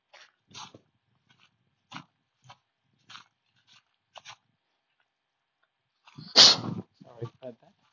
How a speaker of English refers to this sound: Hey, Luna. Hey! What are you barking at? Luna, Mingo!